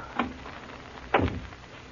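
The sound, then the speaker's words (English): A door is pushed shut: a light knock of contact, then about a second later a heavier, louder thud as it closes, with no voices around it. “Better close the door.”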